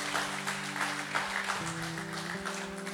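audience clapping

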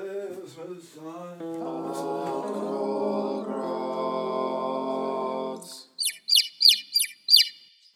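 birds chirping and tweeting

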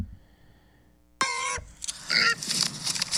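pigs grunting and oinking

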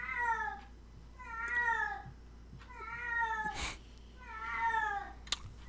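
cat meowing loudly

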